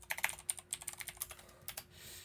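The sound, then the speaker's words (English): Rapid clicking of computer keys as someone types in a search for the Cartoon Network show Codename Kids Next Door, a quick irregular run of sharp taps at moderate volume, with no voices, ending in a brief soft hiss. “Yeah, I'm going to type this in.”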